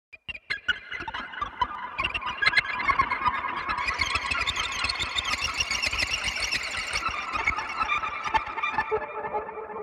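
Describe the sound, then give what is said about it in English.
Guitar strings tapped over the pickups with a glass slide or metal spanner, producing a dense, continuous stream of squealing metallic chirps and pings with rapid clicking taps underneath, high-pitched and fairly loud throughout. “Create ear candy effects by tapping the guitar strings over the pickups using a glass slide or a metal spanner.”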